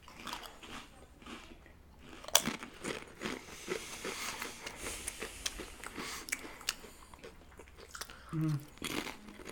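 Crisp, repeated crunching of sweet and spicy flavored Pringles potato chips being bitten and chewed, with irregular bursts of sharp crackling and a few quieter pauses; no talking, just steady munching throughout.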